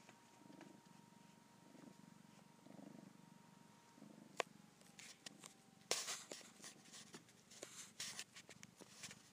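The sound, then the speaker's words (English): A cat purrs steadily in a low, rumbling rhythm, with a faint hum and scattered clicks and rustles breaking in near the end. “If you're a cat or if you're a human taking a cat nap. There is a season purr.”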